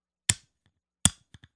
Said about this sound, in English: Hey, there you go. Goddamn. Fucking lighter.